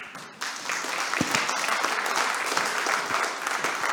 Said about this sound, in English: Thank God somebody over there started clapping.